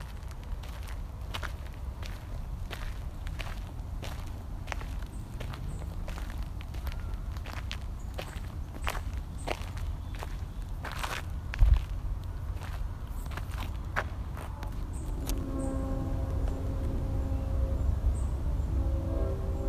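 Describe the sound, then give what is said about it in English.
Steady footsteps walk along an outdoor path in Discovery Park at an even pace, heading to where a train can be heard, each step a crisp crunch over a low rumbling background, with a faint tonal whine emerging near the end. “So I just got to walk to where I can hear the train in Discovery Park,”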